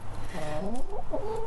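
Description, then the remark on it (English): Pet hens cluck outdoors in a busy, overlapping string of short, warbling calls, steady throughout, with a low background rumble beneath them. “That's my hens you can hear.”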